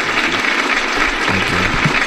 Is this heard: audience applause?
yes